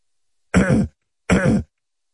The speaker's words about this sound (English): I practically shit in the bed trying to get you up. You didn't hear me clearing my throat?